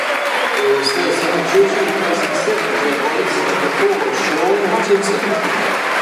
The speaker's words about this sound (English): Good applause for Jed Wallace.